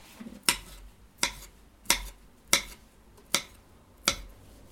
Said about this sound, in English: Nice little chopping.